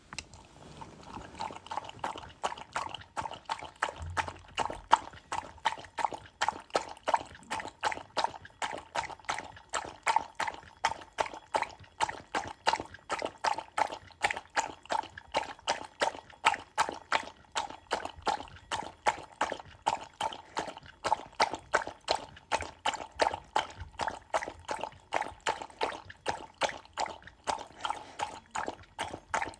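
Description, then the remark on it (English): A dog laps water steadily, a fast, even rhythm of wet slurping that runs the whole time with no voices over it. “Maxi Jacks is drinking some water.”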